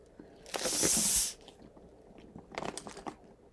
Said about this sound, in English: Now, it has been in my fridge, maybe not quite 6 months, but like 4 months. I'm just gonna release the tension and create some ice cubes. Ready?